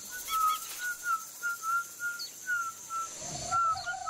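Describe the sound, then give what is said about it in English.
A person whistles a quick run of short, clear notes at an even rhythm, about ten in a row, with a slightly lower note near the end. No one speaks. “Whistling, yes.”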